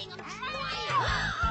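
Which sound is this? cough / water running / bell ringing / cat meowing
cat meowing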